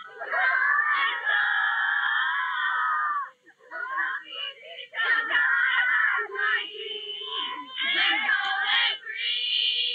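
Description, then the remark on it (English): A crowd of hundreds of teenage girls, with some boys and adults, screams in loud, shrill, sustained waves, briefly dipping before surging again, with no clear words, as a pop star comes down the stairs on a cold grey day in Melbourne. “The screaming is of such a pitch, and this is teenage girls, but also boys”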